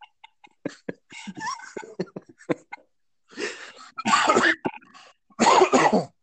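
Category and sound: human body sound, coughing fit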